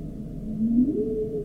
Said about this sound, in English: Those are the humpbacks.